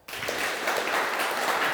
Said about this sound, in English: Good job, class. Doing well. Everyone clap.